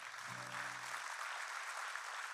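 The True North church audience applauds for Jesus, steady dense clapping spread across a wide band, with a brief low sustained tone at the start fading out after about a second.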